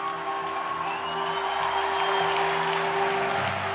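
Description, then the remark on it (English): An audience claps steadily for several seconds for the district leadership and the pastors of the Ohio district, a dense, even wash of hand claps with a faint cheer, while a held low organ-like tone sounds underneath. “Would you clap your hand for our district leadership? And clap your hand for our pastors.”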